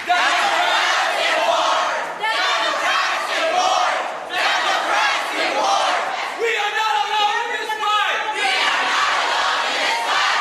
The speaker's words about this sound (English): So the protesters around her, the crowd, they start chanting.